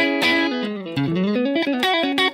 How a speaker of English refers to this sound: Now, right now, all I'm doing is running a little bit of distortion. What I like to do is, right now, if I turn this off, my guitar tone's fairly clean. Okay, and I love that kind of sound.